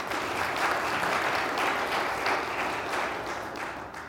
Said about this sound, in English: I think that merits a round of applause.